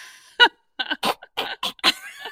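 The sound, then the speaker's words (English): A string of short, dry coughs, about five or six harsh bursts in quick, uneven succession, fairly loud, with no talking. “your cough is so dry. Like, why do you cough like that?”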